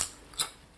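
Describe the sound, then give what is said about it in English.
Two sharp, crackly crunches of crisps being bitten, one at the start and another a moment later, bright and brittle against quiet with no talking. “These are fucking crisp.”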